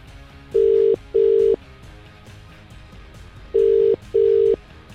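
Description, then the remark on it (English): A telephone ringback tone on an outgoing call made by Absolute Radio presenters to a listener: two double-burst rings, each a pair of short steady buzzing tones, loud and clear over a quiet background, with a pause between them. “If your phone's ringing, get to it.”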